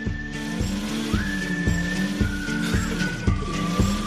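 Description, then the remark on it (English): A car engine revs loudly, its low drone pulsing in a steady rhythm of surges roughly every half second, with a thin whine rising above it, as the driver revs it instead of driving off. “You're just revving the engine.”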